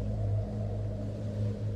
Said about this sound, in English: We heard a car pull up outside and almost instinctively rose from the table. It was a taxi.